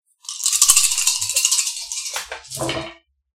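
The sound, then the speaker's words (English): Dice rattle and clatter steadily for nearly three seconds, a bright, dense clicking that swells loudly, dips, then ends in a final burst of tumbling clacks. No one speaks. “So Clytus, you're going to go ahead and add another die to your roll.”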